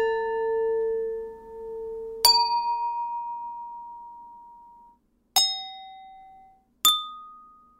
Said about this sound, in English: If you hit another glass, it might go pong. You know, like you just got to hit the sound, whatever sound that glass makes, you got to play it back at it.